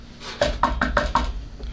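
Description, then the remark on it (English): Five quick knocks on wood in a loose, slightly uneven rhythm, each a hollow, mid-pitched rap with a short resonant ring, moderately loud over a quiet background with no talking. “This should fix it. Knock on wood.”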